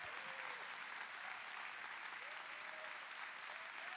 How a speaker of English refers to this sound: Everything you do shall prosper. You should probably clap real loud, like everything.